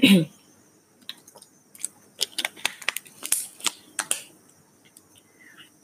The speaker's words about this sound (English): And, excuse me, I'm going to take a drink of water really quick.